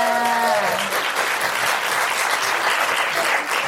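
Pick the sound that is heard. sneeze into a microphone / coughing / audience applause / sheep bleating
audience applause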